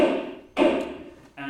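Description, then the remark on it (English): A gavel used by the chair of a debate strikes three times in quick, uneven succession, each a sharp wooden knock with a brief ringing decay, heard on its own with no talking. “I have a gavel.”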